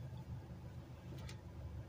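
A parked car's engine idles steadily, heard from inside the vehicle as a low, even rumble with a soft hum and no voices over it.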